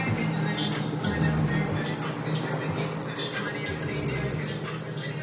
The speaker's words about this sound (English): It's like a free concert. There you go, man. It's like you're inside that car listening to it.